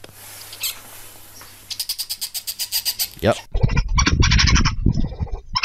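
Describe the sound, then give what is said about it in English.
Badger calls: a quick, even run of about a dozen high, squeaky chirps, followed by a louder, busier stretch where a voice speaks briefly over continued shrill squealing. “And so I started looking up different animals sounds on the YouTubes, and what I found that it was a badger.”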